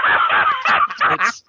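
A voice imitates a duck, giving a quick run of about five harsh, nasal quacks, loud, with brief gaps between them and a short silence at the end.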